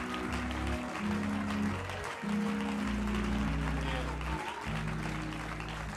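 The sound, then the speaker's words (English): An audience claps steadily for their pastor, bishop and his family: a dense, continuous patter of applause layered over loud, sustained low music chords that shift every second or two. “Can you just give them a round of applause?”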